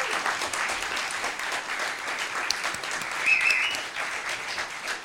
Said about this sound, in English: Can we have another round of applause for everyone on stage?